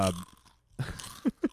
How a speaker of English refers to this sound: You just turn off your mic. Alright, chew away.